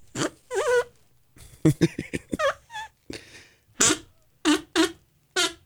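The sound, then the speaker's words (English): A novelty fart whistle blown in a series of short, wobbly toots and squeaks, some bending in pitch, fairly loud, with brief pauses between bursts. “a fart whistle. That was what I was hearing yesterday.”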